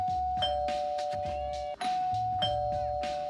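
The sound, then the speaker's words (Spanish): A doorbell rings as a steady, sustained electric buzz, held almost the whole time with one brief break midway, while short rattling bursts repeat underneath it. No one speaks. “Entonces llamaron a la puerta y resultó que era yo.”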